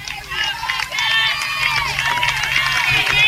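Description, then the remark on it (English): Franklin County fans behind home plate clap and cheer steadily, looking for a third strike or third out, a dense wash of voices and shouts with scattered handclaps running underneath, holding a fairly loud, even level throughout. “Franklin County fans, right down, as we look down the right field line to home plate, they're behind home plate, clapping, looking for that third strike or third out.”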